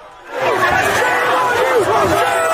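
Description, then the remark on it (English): A loud crowd of many overlapping voices shouting and chanting, a dense, continuous roar of raised voices that swells in after a brief quieter moment and stays steady throughout: pro-Palestinian protesters chanting as they confront police in Bay Ridge, Brooklyn. “The sound as chanting protesters confronted police in Bay Ridge.”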